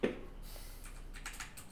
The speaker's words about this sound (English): What are you typing? What is happening?